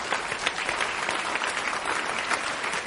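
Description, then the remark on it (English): An audience applauding together to cheer on people being confirmed, a dense, steady wash of clapping from many hands that holds at an even loudness throughout, with no voices standing out. “Yeah, let's cheer these guys on.”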